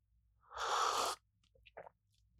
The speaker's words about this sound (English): Let me sip some coffee.